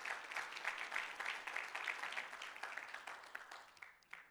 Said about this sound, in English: Let's give the Lord a clap offering on that one, if you would.